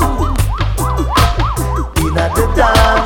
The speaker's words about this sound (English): Hear siren coming from down the block. Them circle the dance from the front to the back.